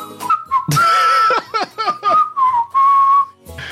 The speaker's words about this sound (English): Let's see if the video helps. Oh, we got the claps. Oh, and the whistles.